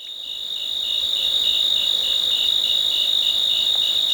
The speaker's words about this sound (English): We leave you this week with the sounds of a summer night in the Cascade Mountains of Northern California. Crickets and cicadas form the backdrop to the splashes and croaks of bullfrogs. A great horned owl out hunting hoots occasionally.